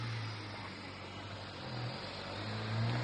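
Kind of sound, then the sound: vehicle, car passing on street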